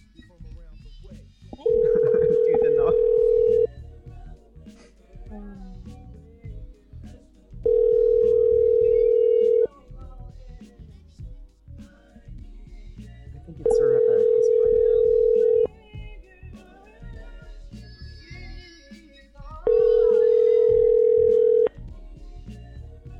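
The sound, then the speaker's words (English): A phone line rings out four times on an outgoing call, each steady tone lasting about two seconds with pauses between, while people talk quietly in the background; the call is then forwarded to an automatic voice message. “A lot of ringing tonight.”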